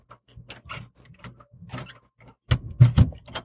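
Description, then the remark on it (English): A door opening foley sound effect: a rattling series of latch clicks and mechanical creaks, building to a louder clunking burst near the end, with no one speaking. “You open the door to the right.”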